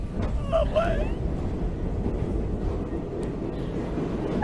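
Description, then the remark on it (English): A steady, loud rumble like a train rolling along the rails, with a brief whistle-like tone near the start over the continuous low clatter. “This is breaking footage of the crazy train heading to Conspiracy Junction.”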